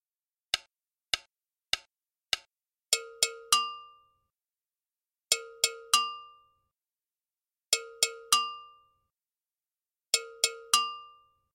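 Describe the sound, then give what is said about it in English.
Four dry clicks count in, then a Gankogui double bell rings out in clusters of three bright metallic strikes, each group followed by a long silence, opening a piece composed by music students. The bell plays alone and clear. “The piece begins with a Gankogui timeline with lots of space.”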